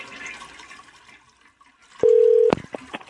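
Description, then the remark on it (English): A single loud electronic telephone keypad beep, pressing 2 for the front desk in the Clarion Inn and Suites phone menu, holds steady for about half a second, then a few sharp clicks follow, after a stretch of soft rushing background noise. “For the front desk or all other inquiries, yes. Please press 2.”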